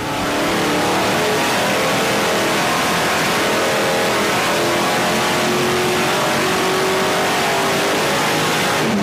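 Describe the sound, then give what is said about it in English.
A Chevrolet 409 V8 engine with two Carter four-barrel carburetors, a solid lifter cam and factory exhaust headers roars at high revs on a dyno, a steady loud mechanical drone with rising harmonic tones, sustained for several seconds with no talking over it. “It's time to see just how much of that legendary grunt is real and just how much is legend.”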